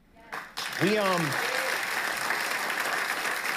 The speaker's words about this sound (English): Like, even the Democrat mongoloids in that audience are like, do we clap now? Okay, yeah, guys, you stop talking. Clap, hurry, before it's awkward.